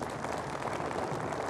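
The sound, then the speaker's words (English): A crowd gives the Lord a hand clap, a dense, continuous wash of hand claps, steady and fairly loud throughout with no voices on top. “Somebody give the Lord a hand clap right now.”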